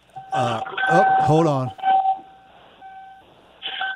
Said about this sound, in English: But instead, all of a sudden, I hear the beeping of your car door interrupting my whole little monologue and shit, man.